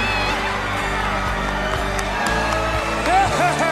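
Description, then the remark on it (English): A crowd cheers and roars continuously after the finish of a routine, with scattered whoops and shouting voices rising above the dense, steady wall of noise, swelling slightly near the end. “Unbelievable finish to an incredible routine, and they've won this crowd over.”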